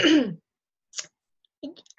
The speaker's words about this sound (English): sorry, clear my throat there.